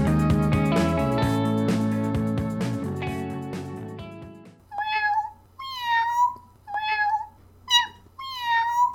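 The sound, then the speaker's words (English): A short burst of music fades out, then a cat meows about five times in quick succession, loud, each cry rising and falling in pitch with brief pauses between. “Gumby Cat Productions. Podcasts for podcast people. Meow. Meow.”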